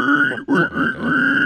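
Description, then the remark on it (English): A person imitates a pig squeal: a loud, strained, high-pitched vocal cry with a nasal, grunting edge, briefly broken by a short gap, then continuing steadily for over a second. “I don't think I've ever done a pig squeal before.”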